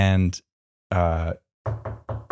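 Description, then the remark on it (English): A voice imitates Shaq knocking on a door while holding a camera: after a couple of drawn-out vocal sounds come four quick, evenly spaced knock-like bursts, fairly loud. “The door knocks. But not the door knocks, but there's a knock.”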